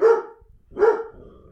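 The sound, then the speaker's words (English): Two sharp, loud dog barks about three-quarters of a second apart, with a faint low rumble trailing after each one and no talking. “Dog's in combat mode.”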